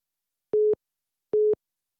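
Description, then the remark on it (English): Two short, steady electronic beeps, evenly spaced about a second apart, from a phone as a call drops. Clean and moderately loud, with silence around them and no talking. “Did I lose you? Yeah, sorry about that. I think it was my phone.”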